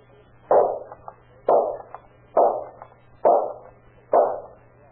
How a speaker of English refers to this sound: Oh, boy, look at that. 5 shots and 5 bullseyes.